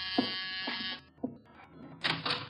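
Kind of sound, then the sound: household object, door buzzer ringing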